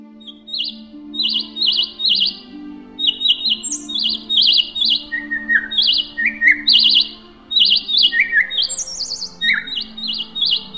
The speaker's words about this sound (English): I stopped my walk, heeding the cries of a sparrow stranded on a wire fence.